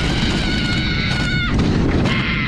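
A woman screams on a roller coaster, long high-pitched wails that break off and start again, over a loud, steady rushing rumble from the ride.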